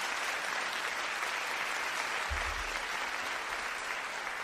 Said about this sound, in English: Shall we give the Lord a clap offering? Come on. Hallelujah.